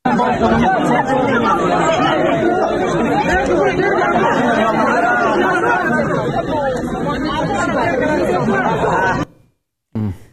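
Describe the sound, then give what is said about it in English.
A dense crowd at the airport in Kabul chatters and shouts loudly and continuously as people pass infant children to others ahead of them. Many overlapping voices form a tense hubbub for about nine seconds before it abruptly cuts off. “We have some heartbreaking video from Kabul that shows people passing their infant children to other people in the crowd ahead of them at the airport, hoping that those babies and toddlers will be evacuated.”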